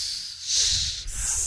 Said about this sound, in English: Listen to that sizzle. See, that was the thank you. Hot. That was a sizzle.